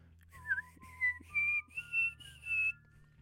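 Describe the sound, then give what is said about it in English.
A person whistles a bright, wavering melody in a series of short phrases, sustained notes gliding up and down over a steady low instrumental backing. “If you ask me a good day, I could do both whistling parts.”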